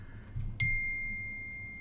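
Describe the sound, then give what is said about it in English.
A single bright phone notification ding rings out at moderate volume, its clear tone sustaining and slowly fading over low background room rumble with no talking. “Someone turn off their phone.”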